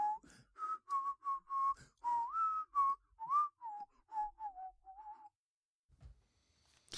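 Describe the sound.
A man whistles a bouncy Disney melody of clear, sustained notes, each slightly bending in pitch, for about five seconds before trailing off into near silence, demonstrating inward whistling in a commercial for a whistling album.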